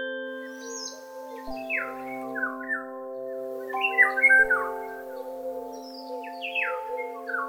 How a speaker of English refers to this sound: As a little bird lights on the tree just outside the window,